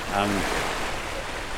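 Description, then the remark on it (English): Fast-rising tidal river water rushes past in a steady, full-bodied wash, carrying debris back up with it, with a brief murmur of voices near the start. “And all the debris that we just saw is coming back up.”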